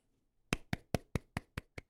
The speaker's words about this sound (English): Thanks, sir. That's my claps for you. Non-sarcastically.